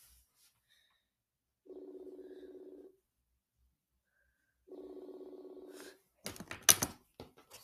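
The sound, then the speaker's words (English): A phone's outgoing ringback tone sounds twice while calling someone, each a steady low-pitched buzz lasting over a second with a pause between, followed by a brief burst of rustling noise. “Oh dang, it's already calling him.”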